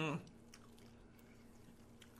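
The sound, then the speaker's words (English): Quiet chewing of a crunchy piece of meat, with a few soft crisp crunches spread over a couple of seconds after a brief vocal sound at the start. “I clocked that piece of meat. Oh, this one's crunchy.”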